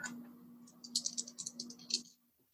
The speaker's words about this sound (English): Which is to say that because you have drawn a heart, it's not a diamond, it's not an exact match, but it matches color, so you're going to roll two dice and take the higher result.